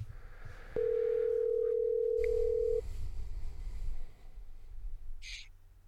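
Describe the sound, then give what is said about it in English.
A phone's ringing tone as a call is placed: a single steady, mid-pitched electronic beep held for about two seconds, then silence, with a low rumble of background noise and no one speaking. “So bear with me while I do this, calling him now.”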